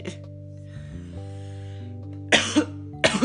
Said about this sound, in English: Oh, gosh. Sorry. No idea why I just coughed. I think it's because my mouth is dry.